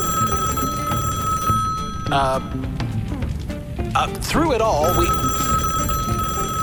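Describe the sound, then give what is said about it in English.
An old-style telephone bell rings steadily and fairly loudly throughout, while brief voices and a couple of other noises break in over the ringing partway through. “When did we get a phone?”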